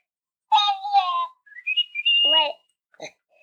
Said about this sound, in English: This is my bird. And what, do you know what it's from? I think they were called Live Pets. Yeah. And why don't you record something for us? We can push this button and the bird talks what we say.